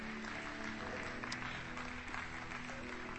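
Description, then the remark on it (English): An audience at a church service claps steadily for the people behind the Camp Works initiative, a dense, even wash of many hands at a fairly loud level with no talking over it. “Let's give Tim and Louise a clap, because I'm going to share more of what they do.”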